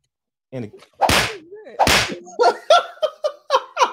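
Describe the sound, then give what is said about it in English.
Two loud, sharp slap sound effects crack about a second apart, punchy, surrounded by short vocal yelps and a quick run of exclaiming bursts that follow. “He was slapping you”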